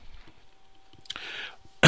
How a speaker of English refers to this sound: But first, let me take a sip of my Mountain Dew Code Red. Free plug.